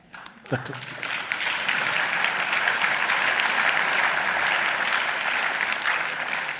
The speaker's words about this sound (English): All 3 hours, applause.